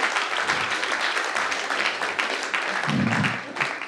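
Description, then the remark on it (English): A crowd claps steadily for about four seconds, a dense, even patter of many hands with a few voices mixed in underneath. “It does deserve a clap.”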